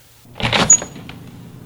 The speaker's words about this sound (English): Did you just open the door? All right. Hold on.